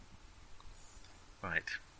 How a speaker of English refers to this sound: I rolled. You roll that many dice plus adds, and then add in your adds. And tell us if you get any sixes.